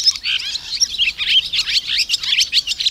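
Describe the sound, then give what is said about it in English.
A busy chorus of swallows chirps continuously, with rapid, overlapping high-pitched twitters and squeaks rising and falling in bursts throughout, with no voices present. “In spring, it's all business, as the swallows start selecting their sites and building their nests.”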